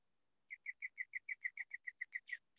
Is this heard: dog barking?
no